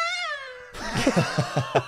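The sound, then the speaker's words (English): A voice imitates a Formula One race car with a high, nasal whine that drifts slightly downward for under a second, then breaks into rapid, breathy rhythmic bursts. “Can you both do your best Formula One race car impression, please?”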